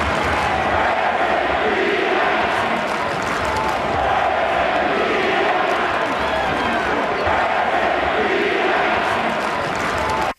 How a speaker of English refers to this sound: For those who couldn't hear, the Denver crowd serenaded Philadelphia with, quote, "Where's Embiid at?"